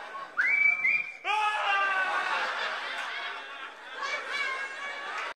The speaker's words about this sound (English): This is the podcast for you if every time you hear that Old Spice whistling, you think about semen rolling down your harbor town.